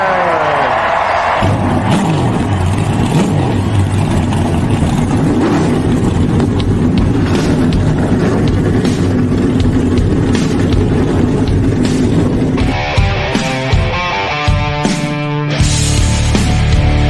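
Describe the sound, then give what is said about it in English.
Several race car engines roar to life and rev hard and loud, their pitch climbing and dropping in overlapping sweeps that fill the whole stretch without pause. “Drivers, start your engine!”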